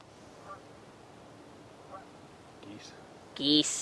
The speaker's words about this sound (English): Geese. I think that's what I heard earlier.